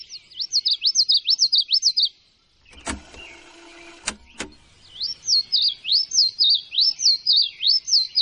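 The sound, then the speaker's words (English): Bird song recorded on tape at high speed, then played back at half speed, which slows it down and lowers its pitch: quick, evenly repeated chirping notes in two stretches, broken in the middle by a brief mechanical whirring and clunking. The birdsong is clear, with no voices. “Back in the 70s, he recorded birds on tape at high speed, then played the tape back at half speed.”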